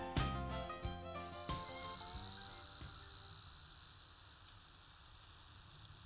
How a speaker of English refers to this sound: We leave you this week with the sounds of summer. This is the trill of one of the most common crickets, the Carolina ground cricket. It's small, about a third of an inch long, and cold-hardy